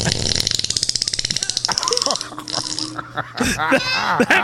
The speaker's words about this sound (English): All right, I'm going to the one that says wet and airy. Wet and airy. Violent fart.